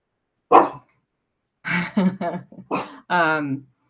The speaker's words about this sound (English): hey, what a puppy. No, she's 14, and so she kind of runs the world, and so I apologize.